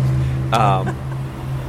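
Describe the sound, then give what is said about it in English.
A bus rumbles past on a city street in downtown York with a steady low engine drone, and a brief voice or tonal squeal cuts through near the middle. “I'll let this bus go by.”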